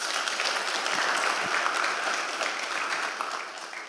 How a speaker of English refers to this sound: Clap for him.